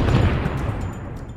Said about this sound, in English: The explosion rocked the ground and shattered the windows of the cars parked nearby.